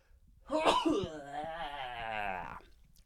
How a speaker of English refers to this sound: Is there a sneeze?